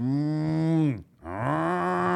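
A cow moos twice in a row, each a long, loud, low drawn-out call, with a brief pause between them and no talking.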